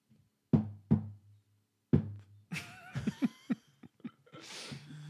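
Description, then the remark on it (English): Three solid knocks on a toilet stall door, two quick ones then a third after a pause, resonant, followed by a busier stretch of muffled thumps, rattling and a faint tonal squeal. “looks at you and then knocks on the door.”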